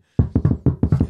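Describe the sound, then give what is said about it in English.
Someone knocks firmly on a door, about six solid raps in a quick, slightly uneven rhythm, fairly loud, with no voices. “Come in. The door is open, please.”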